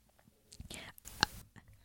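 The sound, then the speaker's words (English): A soft, failed attempt at a burp made with the mouth: two short breathy, gulping bursts with a small click in the second, quiet and with no one talking. “was that your attempt at a burp?”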